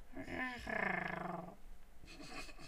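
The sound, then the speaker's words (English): A voice rolls its R in a long, buzzing trill imitating a cat's purr, about a second of rapid fluttering vibration after a short sliding vocal onset, then fades into softer rustling. “How many times can I roll my R's on? It just sounds like I'm purring at this point.”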